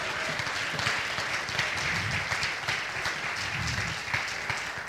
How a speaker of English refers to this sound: Come on, if you believe that, clap your hands unto the Lord.